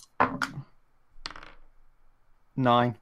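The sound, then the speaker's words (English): A set of three dice clatters across a table in two quick rattling bursts, with a short voiced sound right at the end. “Now, could you roll me one more set of 3 dice, please?”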